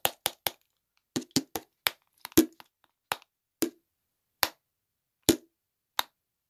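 Two bottles clicked together about a dozen times, sharp bright taps in an uneven rhythm, some in quick bursts of three, then spaced farther apart, with no talking.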